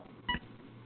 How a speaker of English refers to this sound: I think someone's cell phone is beeping. Yeah, no, that's my battery is dying